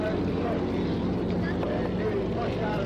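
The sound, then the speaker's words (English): A steady, loud engine drone from three racing boats coming out of the pits onto the course, including the Notre Dame and My Gypsy, with a constant hum and wind-like roar throughout, while a voice speaks over the noise. “Three boats so far out on the course.”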